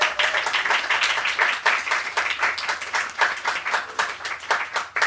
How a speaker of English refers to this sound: Thanks everyone for coming. We could do another clap for everyone who performed, I reckon.